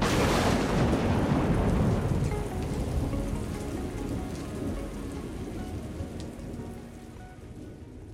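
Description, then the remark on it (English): Heavy rain pours steadily on a surface while a deep roll of thunder booms over the first couple of seconds, then fades, leaving the dense, hissing downpour alone with no voices. “which looks at the nature of lightning and how storms that produce it may be changing”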